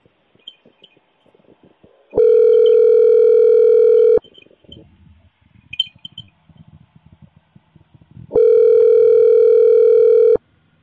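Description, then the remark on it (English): A telephone rings twice, each loud, steady electronic tone lasting about two seconds with a pause between, over faint background rustling and no talking. “Got a phone call, don't you?”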